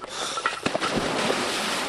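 A diver in a wetsuit steps off a dive platform into the cold water of Lake Champlain, a sharp splash followed by a steady rush of churning water and bubbles, fairly loud, with no voices.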